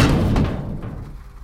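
Heavy banging on a door downstairs by a half-orc: a dull, low, booming thud with a rough rumble that lingers and gradually fades out, with no voices present.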